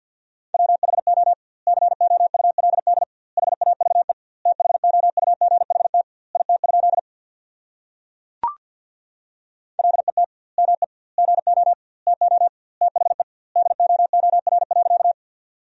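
Rapid Morse code at 50 words per minute with doubled word spacing, sending sentences built from the 300 most common words: a steady mid-pitched tone keyed in quick dots and dashes, grouped into words with short gaps and one longer pause broken by a brief click.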